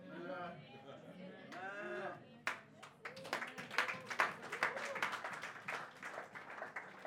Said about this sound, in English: Some of you didn't like that. That's why a few people clapped.